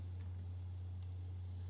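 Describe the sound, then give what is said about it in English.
A few faint, scattered clicks on a computer keyboard that is not connected, three light taps spaced unevenly, over a steady low electrical hum with no one talking. “The keyboard's not connected.”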